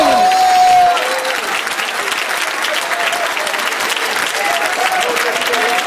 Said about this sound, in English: Oh, you want to clap your hands. ¿Por qué no le aplaude al Señor? And shout unto God. El grito de júbilo.